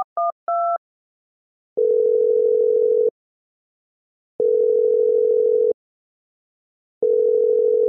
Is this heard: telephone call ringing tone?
yes